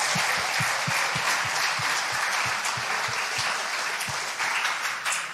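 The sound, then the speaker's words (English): A crowd applauds steadily, dense clapping filling the space with a few louder claps standing out, continuing at an even level throughout with no voices rising above it. “Yes, cheer for them. They deserve it.”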